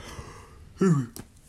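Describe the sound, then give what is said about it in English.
A short, loud voiced yawn with a falling pitch, lasting about a third of a second, followed by a quick breathy exhale, with faint background noise before it. “I had to let that full yawn out, otherwise I was just gonna bother it forever.”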